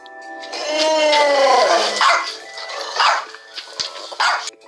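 A dog barks, starting with a long, rising-and-falling yelp followed by a few shorter, sharp barks spaced unevenly, with no one talking over it.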